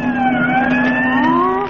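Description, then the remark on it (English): Police car sirens wail steadily and loudly as they go past, the pitch bending slightly, with a low vehicle rumble underneath and no one speaking. “There have been sirens going past here all afternoon. Is there a fire someplace? Those aren't fire engines. Those are police cars.”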